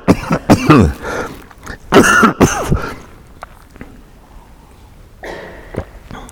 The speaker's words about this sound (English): Excuse me, I wonder if the sound people will turn the sound off for a moment so I can cough. Excuse me.